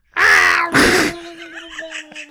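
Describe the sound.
A person vocally imitates a scream underwater: two loud, harsh, strained shrieks, then a quieter warbling, gurgling tail that wavers in pitch, with no other talking.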